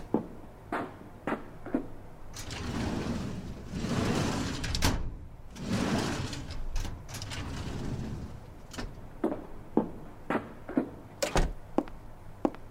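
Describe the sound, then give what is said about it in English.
Drawers of two red metal filing cabinets in a hallway rumble open and slam shut again and again, long sliding rolls broken up by sharp thunks and bangs, fairly loud, with no talking. “Open a random drawer in each one of them, then come back in here.”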